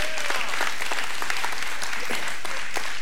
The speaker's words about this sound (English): Any teachers in here, hold your hands up real high. Woo! Y'all give our teachers a hand clap of praise. Amen.